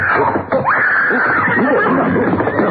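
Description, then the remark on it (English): A mountain lion screams: one long, high, wavering shriek that sweeps sharply upward and then holds, loud and harsh, over a steady hissy background. “Paladin, there's a mountain lion up”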